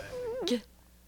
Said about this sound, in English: Losing her mind. Oh, yeah. The cat's having a great time, but that's what you hear.